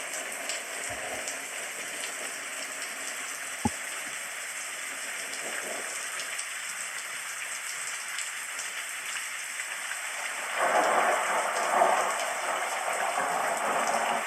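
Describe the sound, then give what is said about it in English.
Steady rain hisses down in a dense, even patter, with thunder crackling in the distance, swelling louder for a couple of seconds near the end, with a single sharp tap partway through and no voices. “as the rain is falling and the thunder is crackling in the distance.”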